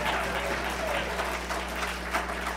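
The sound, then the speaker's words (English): A church audience claps in a steady, dense round of applause for the team that removed the snow that morning, a continuous patter of many hands over a low, constant hum. “Give those guys and gals a round of applause.”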